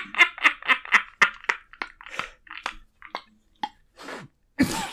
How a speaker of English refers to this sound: And now he's having a coughing fit because he's laughed so hard.